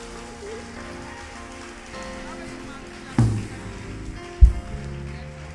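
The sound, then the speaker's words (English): A church audience gives a clap offering in honour of a man, a steady, dense patter of applause that holds throughout, swelling with two sharper, louder bursts near the end, with faint voices mixed in. “Let us give a clap offering.”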